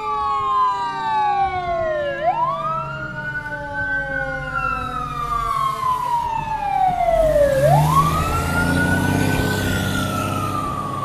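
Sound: fire truck siren passing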